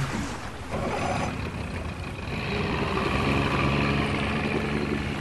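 A motorboat engine on a lake drones steadily, with a broad rushing wash of water underneath, holding a constant loud hum throughout with no voices.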